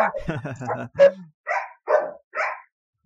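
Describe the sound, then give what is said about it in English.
After a brief moment of voice, the speaker's dogs let out four sharp, evenly spaced barks, loud and distinct, each one short and punchy. “It's my dogs agreeing with me.”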